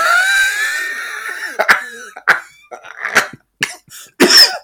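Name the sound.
cough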